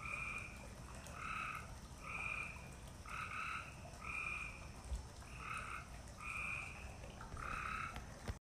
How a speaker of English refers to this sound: Oh my gosh, those frogs are driving me crazy, Jet's mom remarked as she was tucking him in for the night. The chirping was so loud that they could hear it upstairs in his room.